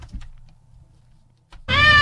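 A cat lets out one loud, drawn-out meow with a clear, tonal pitch, coming suddenly after a stretch of quiet low rumble and a few faint taps.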